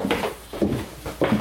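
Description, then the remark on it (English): Three evenly spaced knocks on the wooden door of a writing studio, each a dull, hollow thud with a slight ring, moderately loud, with no talking. “we might knock on the door there and interrupt Paul”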